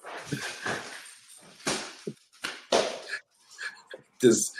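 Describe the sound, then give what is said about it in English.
A dog yelps and whines in short, irregular bursts over about four seconds, the cries fairly loud and strained, separated by brief pauses with some rough background noise. “Did he already get there to take the dog? It sounded very violent.”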